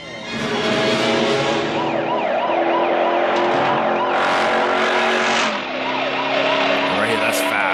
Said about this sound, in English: This cop here is, like, going fast through parking lots and jumps and stuff. Like, it is a very exciting scene.